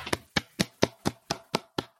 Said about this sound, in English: We don't have the button to clap, so we have to do that. They don't have it. I do, and I don't want to clap for myself. But great audio having people clap into a mic. It's real good audio.